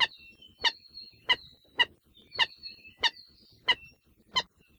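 An ʻalae ʻula, an endangered bird subspecies, gives a rapid series of sharp, chicken-like cackling calls, about eight harsh notes repeated at a steady pace, fairly loud, with no one talking.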